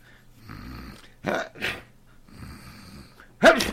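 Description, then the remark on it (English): A man sneezes sharply and loudly near the end, after a couple of snuffling, breathy bursts and some low, rumbling breathing, with no talking. “Gesundheit.”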